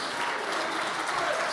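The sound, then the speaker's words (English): An audience claps steadily during a sermon, a dense wash of many hands applauding, sustained and fairly loud throughout with no distinct individual claps standing out. “If it has, I want you to clap your hands and shout hallelujah.”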